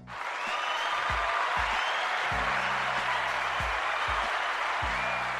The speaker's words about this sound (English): Go on and clap for the people.